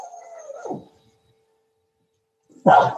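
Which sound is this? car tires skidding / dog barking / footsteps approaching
dog barking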